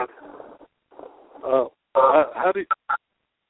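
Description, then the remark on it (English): Muffled, narrow-band voice fragments come back over a phone line like an echo: a low murmur, then several loud, garbled bursts and two short clipped blips, with no clear words. “I seem to have an echo on this”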